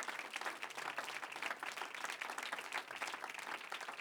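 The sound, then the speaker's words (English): An audience at a morning church service applauds steadily for about four seconds, a dense wash of many hands clapping at an even, sustained level with no voices standing out. “Let's give them a good hand.”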